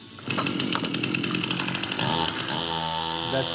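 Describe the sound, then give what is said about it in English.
A Stihl Farm Boss chainsaw engine roars steadily in the morning, its harsh buzzing whine holding loud throughout, with the pitch shifting slightly as it revs near the end. “The sound of a farm boss still chainsaw in the morning.”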